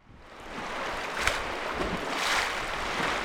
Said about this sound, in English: is sitting on the yellow rubber edge of a huge inflatable raft as the boat splashes through the Yampa River. We're flying along. There's no way in the world you could run this fast along the side of the river.